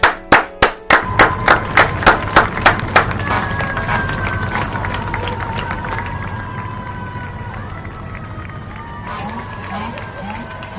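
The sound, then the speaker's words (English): A crowd of people on balconies cheers and claps for hospital workers facing COVID-19 during a shift change, opening with a steady run of sharp, evenly spaced claps or bangs that give way to a continuous roar of voices, whistles and rising tones. “There were videos of people stepping out onto their balconies during shift change to cheer for the workers that face COVID-19 inside the walls of the hospital to protect their communities, our country, and the world as a whole”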